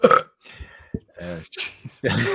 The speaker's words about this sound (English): that was a supportive burp.